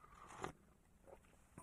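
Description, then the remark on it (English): A quick, wet slurp of a hot drink in the morning, followed by a pause and a second short sipping burst at the end. Fairly soft, with no talking. “Love a good slurp in the morning.”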